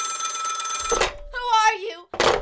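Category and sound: household object, telephone ringing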